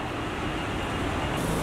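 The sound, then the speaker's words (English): A BMW car rolls up at a hotel valet with a steady, broad engine and road rumble, holding at an even loudness for a couple of seconds with no one speaking. “And there's our car.”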